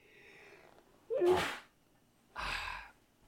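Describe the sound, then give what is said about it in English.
A sharp sneeze with a brief voiced intake before the burst, followed about a second later by a second breathy, sneeze-like burst, with quiet background hiss around them. “God bless you.”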